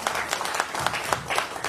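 An audience breaks into a steady round of applause, many hands clapping together in a dense, crackling wash with brief sharper claps standing out, sustained for the whole moment.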